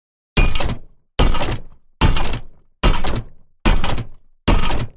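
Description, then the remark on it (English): A designed heavy-robot sound effect made by processing and mixing a wheelchair, a vacuum cleaner, a metal bar and a rock crush: six loud, crunching mechanical impacts in a steady, evenly spaced rhythm, each hitting hard and then fading out, with no one talking. “For example, there are a heavy robot like I create.”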